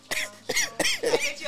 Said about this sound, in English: It's not COVID. It's my allergies. Don't worry about it. I'm actually coughing now because those make it funner.